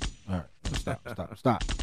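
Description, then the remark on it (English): A voice imitates gunfire with a rapid string of punchy mouth-made bursts, fairly loud, like a quick volley of shots fired one after another. “I don't even know if I'm going to give gunshots. So let me do it real quick.”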